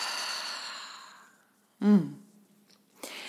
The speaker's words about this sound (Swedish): Så vi andas in genom näsan, fyller upp magen med luft och släpper ut andetaget i munnen. Nice. En gång till, andas in. Och släpper ut långsamt.